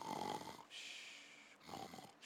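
Faint snoring: a rough, rattling snore gives way to a long airy hiss of breath, and then the cycle starts again. Nobody speaks.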